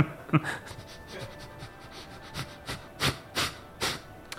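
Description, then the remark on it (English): A person imitates a dog sniffing and panting: a few quick breathy sniffs, then a run of five or six sharp, airy pants in a steady rhythm, fairly loud, with no talking. “So dog sniffing.”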